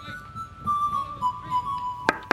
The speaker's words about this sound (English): That knock on the door signals the preamble to the entry of Lieutenant Redmond Herring, one of the least liked human beings in Commander Pooley's world.